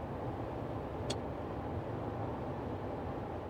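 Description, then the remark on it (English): A car rumbles steadily as it pulls out of a driveway and rolls away, a low engine and road noise holding even throughout, with one brief high squeak early on. No one speaks. “Connie and Steve pulled out of the Walker's driveway, took a right onto Mansion Road and a left onto Corn Neck.”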